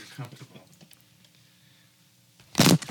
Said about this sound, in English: Oh, God. Oh, my God. And that's how you fucked the show up. And you killed it. Man down. Microphone down.